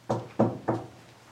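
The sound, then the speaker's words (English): Three firm knocks on a wooden surface, evenly spaced about a third of a second apart, fairly loud, followed by quiet room tone. “All right, can you go ahead and just knock three times like this?”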